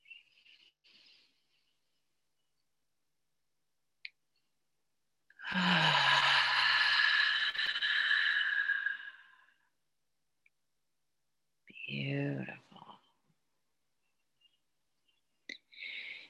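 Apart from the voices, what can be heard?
person yawning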